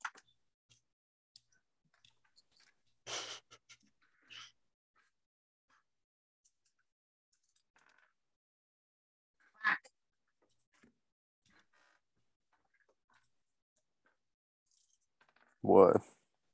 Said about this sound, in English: Roll percentile dice. All right. Where the fuck did I put my dice? I have no idea. Here they are.